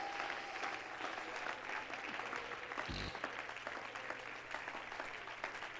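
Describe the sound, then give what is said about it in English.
An audience at a church service claps steadily in dense, continuous applause, with scattered shouts of yes rising from the crowd; the clapping stays loud and even for the full stretch. “Clap your hands one more time and shout, yes.”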